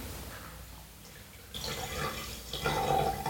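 A 2016 Semper Sun Chase Vineyard Chardonnay wine pours into a glass, a soft gurgling splash that starts after a brief quiet moment, swells, and rises slightly in pitch as the glass fills. No one speaks.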